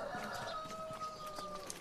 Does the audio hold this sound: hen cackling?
yes